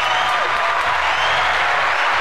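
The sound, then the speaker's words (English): An audience claps steadily for a caller to the show, a dense, even wash of many hands with no pauses, fairly loud throughout and without any talking over it. “you don't have headphones on, but there's a lot of people clapping for you right now.”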